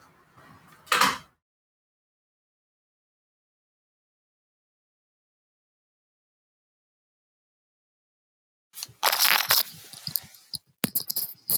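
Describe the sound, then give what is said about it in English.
A door clicks open with a short rattle, then after a long stretch of silence it thumps and latches shut with a cluster of sharp knocks and clatter. “Okay, give them to your sister and then shut the door.”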